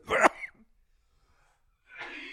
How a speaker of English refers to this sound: Coughing? Yeah. Choking. Choking. Coughing.